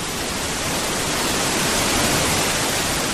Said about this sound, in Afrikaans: Die Trummelbachvalle of Tromme Stroom, want het klink soos tromme wat speel plek in Switserland, is die enigste toegankelijke gletserwaterval binnen in een berg in Europa. Wanneer jy die Bernkanton besoek, is het ondenkbaar dat jy die juweel misloop.